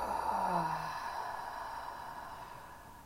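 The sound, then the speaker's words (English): A slow, deep breath in and out, soft, with a faint voiced sigh at the start before the airy exhale trails off over a few seconds. “So just collectively, let's all take a deep breath in, breathing in and breathing out.”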